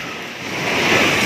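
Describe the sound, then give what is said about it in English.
A dense, roaring rush of crashing tsunami water, waves some 10 feet tall triggered by two powerful earthquakes, surges ashore over an island city on Sulawesi, Indonesia, swelling steadily louder over a second or so, a continuous heavy wash with no voices. “A terrifying massive wall of water smashed over this Indonesian island city.”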